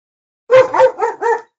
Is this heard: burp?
no